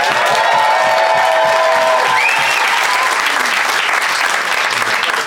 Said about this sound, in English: I'd like you to applaud now. Okay, pretty healthy response there,